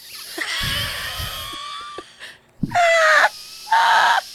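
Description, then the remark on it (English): Obstructed nasal breathing through the side of the nose that did not grow back: three loud, wheezy breaths through the nose, each with a harsh, whistling, squeaky edge, a long one followed by two shorter ones, with no talking. “Y'all, I cannot breathe.”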